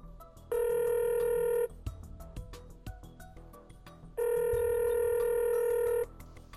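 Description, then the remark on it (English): A phone call is placed and the line rings back twice, each long steady electronic tone lasting about a second and a half, with faint clicks and line noise in the gap between rings. No one speaks. “Let's give him a call.”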